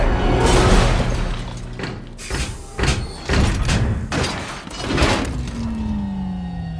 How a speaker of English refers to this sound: Locking the vault door now.